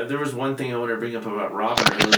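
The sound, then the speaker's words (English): A man speaks steadily, then a sudden, sharp sneeze bursts out near the end, loud and breathy, cutting off the talk. “Bless you.”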